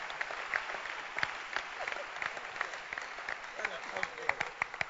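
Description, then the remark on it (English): An audience applauds for the Rotary Club with dense, steady clapping, individual sharp claps popping out over a continuous crackling wash that holds at a moderate level throughout. “Can you clap for Rotary Club?”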